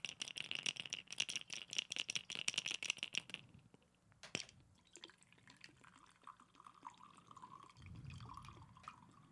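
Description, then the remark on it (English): Whiskey pouring slowly from a bottle, starting with a quick run of rattling clicks, then a thin, gurgling trickle of liquid, with no voices. “You know, not for nothing, but if I fucking wanted to slow pour my whiskey out of a bottle, I would buy those stupid things that they use at a bar.”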